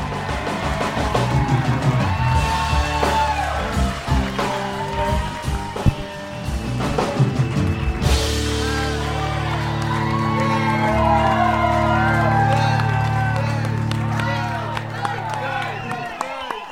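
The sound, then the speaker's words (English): A large audience cheers and applauds loudly for the comedian Injured Dice Clay, with dense clapping, shouts and whoops running steadily for the whole stretch, swelling and staying strong without pause. “Ladies and gentlemen, make some noise for him.”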